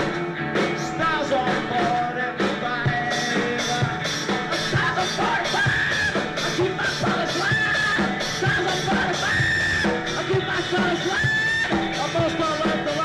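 A singer lets out drawn-out, strained screams over loud, dense rock music, the band pounding steadily beneath the repeated high wails.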